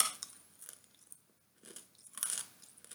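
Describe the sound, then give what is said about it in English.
Crisp crunching of a hard, mildly fizzy candy being bitten and chewed, several sharp cracks in bursts with a brief quiet pause in the middle, no talking. “I bite down on it now? Yeah, like, and I'll chew it up and like eat it like a regular candy.”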